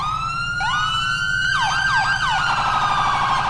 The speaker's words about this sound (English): Still the same old sirens. I need to change those later on in the time of that I have.